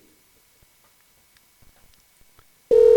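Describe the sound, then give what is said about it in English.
Near silence with a few faint clicks and taps, then a loud electronic telephone ring abruptly starts right at the end, a steady buzzing tone, as an outgoing phone call is being placed. “First off, we'll be able to hear if it's ringing properly.”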